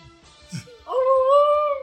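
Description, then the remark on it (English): Someone gives a loud, sustained warbling call, a human voice imitating a turkey gobble, lasting about a second and rising slightly in pitch after a short, soft vocal lead-in. “Is that a Cardinal? It's a paralyzed turkey.”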